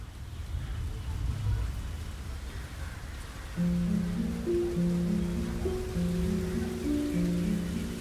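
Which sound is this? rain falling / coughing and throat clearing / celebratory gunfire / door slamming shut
rain falling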